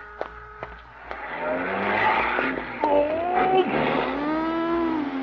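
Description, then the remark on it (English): A car with an out-of-state license plate swerves past on a street as someone crosses, its tires squealing in long sliding tones over a steady engine rumble, loud, with a few sharp knocks at the start. “A lot of traffic today. Four cars and a bicycle.”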